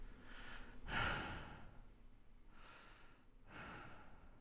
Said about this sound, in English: The short, gasping sound of someone trying to hold their breath and failing.